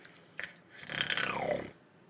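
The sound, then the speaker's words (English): A voice mimics water being poured into a pot: a brief click, then about a second of gurgly, breathy mouth noise whose tone slides downward before stopping. “Give me some better water going to pot sounds.”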